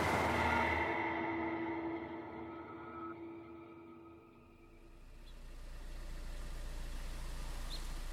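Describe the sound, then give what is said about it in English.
A car engine idles outside a house in the Pacific Palisades neighborhood of Los Angeles on October 10th, 1978, with a steady low, constant hum and faint tonal whine, settling into a deeper rumble partway through. No one speaks. “a car idled outside of a house in the Pacific Palisades neighborhood of Los Angeles.”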